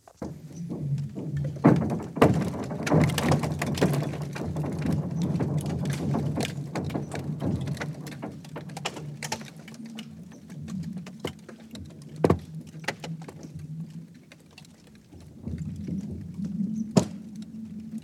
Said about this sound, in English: The Bear Lake ice recordings, that's probably my favorite, just because I really like the sounds, and it was the timing of it was really special. You know, I was like, I'd be hiking and I'd start hearing these noises, and then eventually I figured